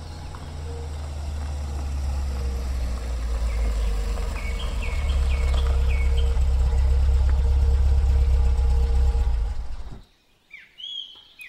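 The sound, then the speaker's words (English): A car engine idles with a steady low rumble for about ten seconds, then cuts off abruptly, leaving birds chirping in the quiet that follows. “Car trouble?”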